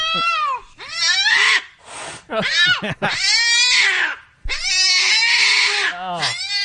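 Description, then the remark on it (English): A cat sitting in a window meows loudly on seeing a man outside, then, on seeing a new puppy being walked up the front stairs of the house, breaks into long, harsh yowls with a brief hiss between them. The cries run almost continuously, rising and wavering in pitch. “The cat is sitting in the window watching outside, sees the guy, so it's meowing, and then sees the dog and flips out.”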